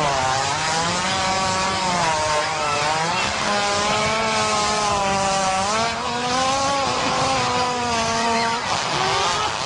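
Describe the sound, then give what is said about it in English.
A hippo farting: one long, loud, rasping blast that buzzes on without a break for nearly ten seconds, its low pitch wavering up and down. No one speaks. “This is the noise a farting hippo makes.”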